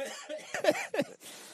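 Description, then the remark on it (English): A short, stifled half cough, two quick throaty bursts with a laugh-like catch, followed by a faint breathy exhale. “He got the half cough.”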